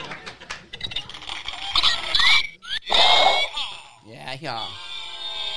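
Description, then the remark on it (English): A cartoonish fart sound effect plays from a soundboard fart button, a loud, buzzy, sputtering blast that wobbles in pitch and ends in a long squealing blat, with people's voices mixed in. “I still got a fart button.”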